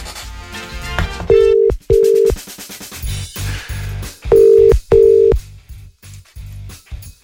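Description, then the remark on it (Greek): A phone call being placed: a flurry of dialing tones, then a steady ringback tone sounding in two paired bursts, clear, with no one talking and no one picking up. “Για πάμε να πάρουμε τον Νίκο τηλέφωνο.”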